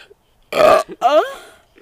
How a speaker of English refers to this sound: Is that my thing? I just burp and then go,